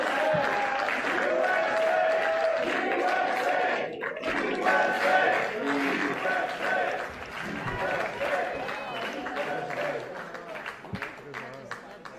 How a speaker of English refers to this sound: And okay, wait, I hear clapping. Good. He's coming. Awesome. I think he's coming.